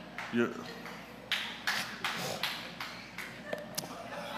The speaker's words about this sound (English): My wife clapping way too loud, amen?